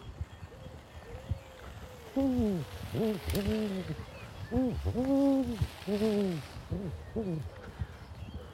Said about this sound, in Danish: Og mere fugle fløjt her nedad. Chipito, chipito, chipito.